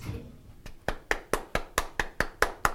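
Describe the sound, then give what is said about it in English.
Steady, evenly paced clapping, about ten sharp claps growing louder after a quiet start, with crisp individual hits rather than a dense wash of applause. No one speaks. “When people destroy us philosophically or people mock us in a philosophical way, that they clap. They clap.”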